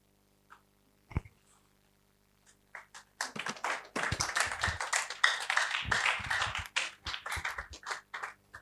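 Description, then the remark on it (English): A crowd of people clapping for a preacher after his preaching, starting with a few scattered claps and swelling into steady, dense applause that continues loudly before thinning slightly at the end. “Okay, thank you for clapping for me the way I preach.”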